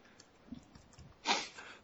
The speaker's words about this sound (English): Oh, pardon me. Yeah. Had a little cough there.